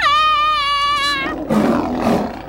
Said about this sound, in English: Look out! Why is there a lion in here?